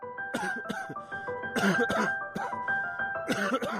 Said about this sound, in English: You coughed a few times until it was over.